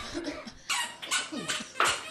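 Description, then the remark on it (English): A man's new sneakers squeak in about four sharp, irregular bursts, each a bright, rasping chirp with a slight downward bend, a little like a duckling's quack. Faint scuffing fills the gaps, and no one speaks. “Don't you hate new sneakers?”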